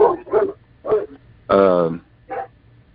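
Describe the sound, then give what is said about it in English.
A dog barks about five times in an irregular burst, with one longer, drawn-out bark in the middle; the barks are loud against a quiet low background hum. “My daughter's dog, he don't like people.”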